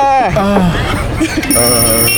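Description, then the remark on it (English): Electronic timers go off at the end of a timed countdown, a shrill ringing alarm with steady high-pitched tones that grows brighter and more sustained toward the end, over a murmur of voices. “Oh, the timers.”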